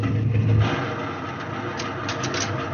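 A Catalina flying boat's engines rumble steadily after landing with a heavy, droning hum, loudest in the first moment and then settling into an even idle with no voices.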